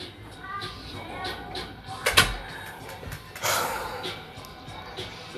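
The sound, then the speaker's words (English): A door is pushed shut all the way with a single solid thud, followed a moment later by a softer rustling bump, over low room noise and faint background voices. “Close my door.”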